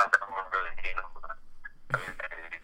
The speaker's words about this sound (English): Yo, where are you at? Your phone reception stinks. I don't have good Wi-Fi at my house. Can you hear me now?